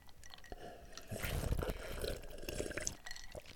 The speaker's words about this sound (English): So just like take a big sip in front of the microphone. Okay. Three, two, one.